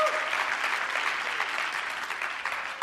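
An audience claps steadily, a dense wash of many hands that holds at an even level for a few seconds, with no voices rising above it.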